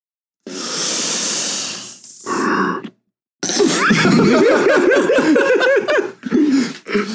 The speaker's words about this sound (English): Everyone taking a deep breath.